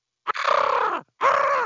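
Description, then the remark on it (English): A person imitates a Seahawk's call as an NFL team animal sound, with two loud, raspy screeches, the first longer and sliding downward in pitch, followed by a brief pause and a second slightly shorter cry. “What's your Seahawk?”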